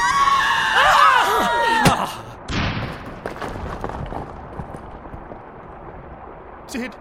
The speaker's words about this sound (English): I'm so sorry, my friends, but that scream, it echoed so horribly in my skull,